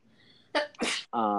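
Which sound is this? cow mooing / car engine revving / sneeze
sneeze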